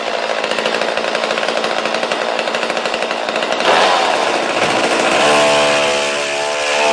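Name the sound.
chainsaw running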